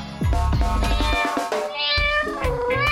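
A cat meows repeatedly in a loud, drawn-out, wavering voice, its pitch sliding up and down across several calls with brief thumps and rustles underneath.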